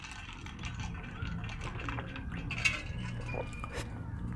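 Someone drinks water from a glass: soft liquid sloshing and quiet sips, with one brighter clink of the glass partway through, over a steady low background hum and no talking.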